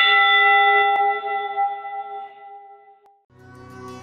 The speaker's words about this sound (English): The church bell chimed till it rang 29 times for each man on the Edmund Fitzgerald.